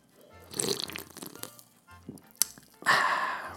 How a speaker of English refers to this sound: I am going to take a sip real quick of my orange vanilla Coca-Cola Zero.